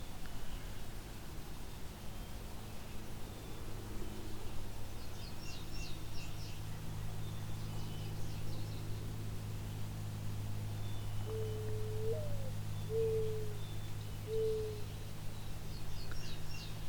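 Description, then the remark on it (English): A mourning dove gives a soft, low-pitched cooing song of three drawn-out notes near the end, the sound coming from its throat without opening its mouth, over a steady low hum, with faint high chirps from other birds. “Close up on a mourning dove.”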